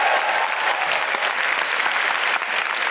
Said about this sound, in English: Big round of applause for all the composers.